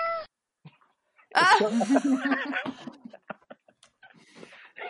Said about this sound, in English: Wait, are those cats? Are cats by my window?